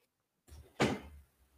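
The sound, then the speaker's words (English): A door the speaker thought was locked swings and thuds shut, a short creak or rustle followed by a sharp, loud knock of wood against the frame, then a low lingering rumble. “I thought I locked my door.”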